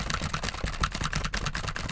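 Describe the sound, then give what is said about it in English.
Rapid, steady clatter of keys being typed on a keyboard during a microphone test, a dense run of sharp clicks and taps filling the whole stretch with no voices. “And if you were typing on a keyboard with the microphone like this.”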